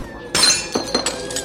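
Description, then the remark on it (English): A dropped glass bottle of brandy hits the floor and shatters in a sharp crash, spilling its contents across the floor, followed by a few bright tinkling pieces scattering and settling. “Spilt all over the floor.”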